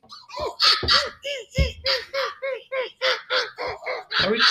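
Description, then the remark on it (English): Voices imitate monkey calls for Monkey Day in a rapid, rhythmic string of loud, harsh hoots and squawks, about a dozen in a row, overlapping and bouncing up and down in pitch. “And that is where we make our monkey sounds go.”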